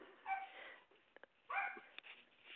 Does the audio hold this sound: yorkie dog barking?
yes